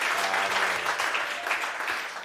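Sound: round of applause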